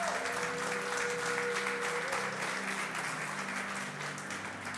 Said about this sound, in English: Let's cheer for them as they're coming up.